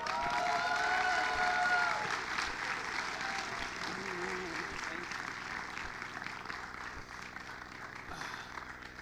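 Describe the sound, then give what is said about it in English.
An audience at a comedy show applauds as a comedian walks on stage, in a dense, steady wash of clapping with some cheering and crowd noise, loud at first and then gradually thinning out over several seconds. “Well, y'all stopped clapping fast, or was I walking slow?”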